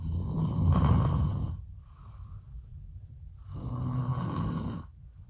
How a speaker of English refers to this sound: Is it me snoring? You're snoring so loud.